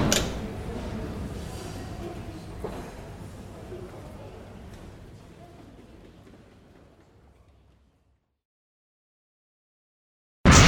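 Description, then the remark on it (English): A man opens a door for someone, with a low rumbling slide and a single sharp click early on, the noise gradually fading away into silence before a brief loud burst at the very end. “And he opens the door for you.”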